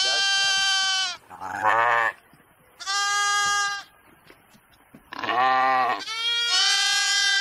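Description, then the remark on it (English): Sheep being herded through a gate bleat loudly, about five drawn-out calls in quick succession from more than one animal, some overlapping, with brief quieter gaps between them and no talking. “There he is, getting the sheep through the gate.”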